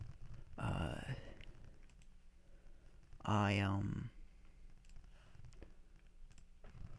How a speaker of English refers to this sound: Excuse my burps. Coffee's giving me the burps.